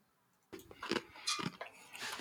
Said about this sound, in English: Jeez, there it is again. I got to get a new chair, man.